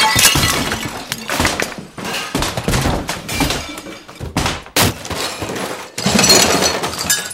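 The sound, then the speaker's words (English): A radio being smashed to pieces: a loud run of crashing blows and cracking, shattering debris, with bursts of impact recurring over several seconds and no voices. “Now your father's a radio. It's smashed to the smithereens.”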